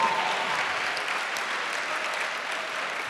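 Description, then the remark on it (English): A church crowd claps steadily and continuously for the Lord, a dense wash of many hands applauding together, with no individual claps standing out and no voices heard. “Clap for the Lord. Clap for the Lord.”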